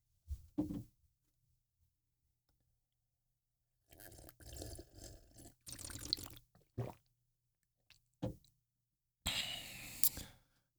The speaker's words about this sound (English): I'm going to sip some tea to that one.